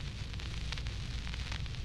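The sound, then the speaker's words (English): Steady hiss of radio static with irregular crackling pops breaking through, from a comms link just short of broken, fairly quiet, with a low hum underneath and no voices. “Crackle of a just this side of broken link”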